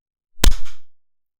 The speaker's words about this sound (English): Okay, let's clap at 40.